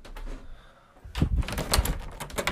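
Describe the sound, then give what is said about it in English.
A door rattles and thuds repeatedly against its frame, a series of loud knocking clatters from someone pushing at it instead of pulling it, with no one speaking. “Oh wait, I was pushing it, not pulling it.”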